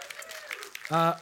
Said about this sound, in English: 468 people, and we had 321 a year ago on the same day. So just to show the growth and how many people have come in. Yeah, that's awesome. We can cheer about that.